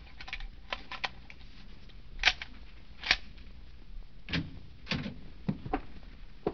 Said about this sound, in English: Have you a pass key? Oh, yes. Open the door.